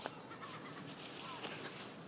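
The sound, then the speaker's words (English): Seagulls squabble over food in a noisy flurry of overlapping squawks and cries, fairly faint and set against a steady wash of outdoor background noise. “They're always fighting over food.”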